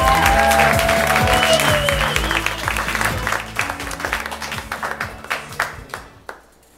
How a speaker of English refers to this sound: Applause, applause for the next storyteller